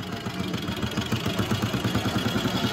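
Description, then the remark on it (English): A motorcycle engine idles steadily, its low, rapid pulsing throb holding an even rhythm throughout with no voices over it. “However, by 1917, the modern era had indeed arrived, and Roy found, much to his delight, that he would carry out his dispatch duties aboard a motorcycle.”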